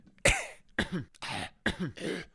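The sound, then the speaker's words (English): A harsh coughing fit: several raspy coughs in quick succession, each a sharp burst followed by a rough, breathy tail, with no talking in between. “You know, I think, excuse me, the cough is still here.”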